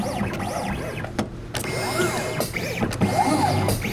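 A computerized mat cutting machine at a frame shop in downtown Rhinelander, set by keyboard for a 5x7 opening and an 8x10 frame, runs, its motors whining in repeated rising and falling sweeps, punctuated by sharp mechanical clicks and a steady low hum throughout.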